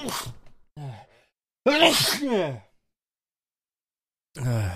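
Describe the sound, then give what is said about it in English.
A single loud sneeze bursts out mid-clip, flanked by short breathy vocal sounds before and after, with brief silences between them. “I was paying attention. I just had to sneeze.”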